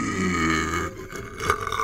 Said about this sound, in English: You can't burp in outer space. When you eat food, your body separates it and the gases rise to the top. But in zero gravity, your food stays mixed together, so burping is impossible.